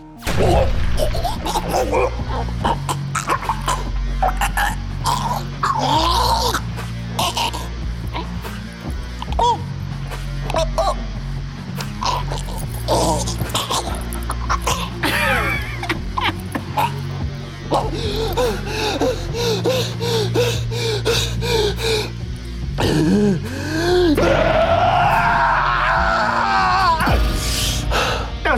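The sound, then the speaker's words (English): A voice actor gasps, groans and chokes through a loud, continuous struggle, punctuated by heavy punching thwacks and crashes, ending in a strained, rising wheezing cry, voicing a character in a violent anime who is punched while the attacker's hand is stuck down the throat. “get punched in the show, but the person's hand kind of gets stuck in your mouth and goes down your throat, and you're almost like choking on their hand as they're punching you.”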